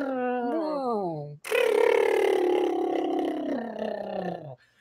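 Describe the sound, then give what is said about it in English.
A voice imitates the Jetsons sky car noise of a futuristic flying car going away: a descending warbly whine for about a second and a half, then a louder buzzy, wavering hum that slowly drops in pitch and cuts off. “what it needed to have is the Jetsons sky car noise as he's going away.”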